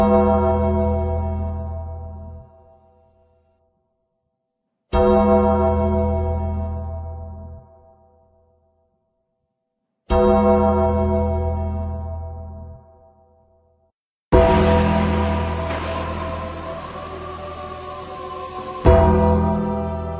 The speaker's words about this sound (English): that music means business, sir. To me, it means run. When you hear the big gong. Just those bells, man. Yeah. Just scary, scary stuff.